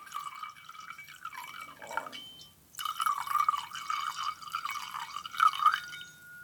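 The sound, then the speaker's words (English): Wine glugs steadily into a glass, clear, with a brief break midway before a second burst of pouring whose pitch rises as the glass fills. No one speaks. “Nice little sound at the end of that pour.”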